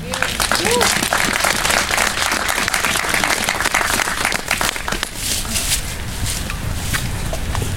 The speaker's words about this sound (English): another big round of applause, please